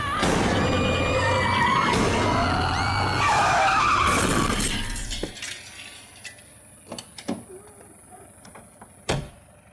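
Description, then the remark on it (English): A car skids with a long, loud screech of tires, ending in a sudden crash, followed by a few scattered metallic clunks and knocks in the quieter aftermath, in a scene from the film The Babadook where Emilia, driving with Samuel, hits someone. “This is a scene where Emilia believes that she sees the Babadook in her car while she's driving with Samuel, and she ends up hitting someone.”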